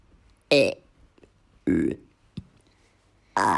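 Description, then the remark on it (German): Three loud, throaty burps arrive one after another with pauses between, the last cut short at the end, plus a small click in the middle; they sound voiced, likely someone imitating burping. “Sie sagten ja und alle rülpsten gleichzeitig und es stinkte etwa dann noch eine Stunde danach.”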